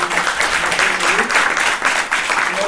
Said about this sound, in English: Please, please, please, a warm round of applause to both of you.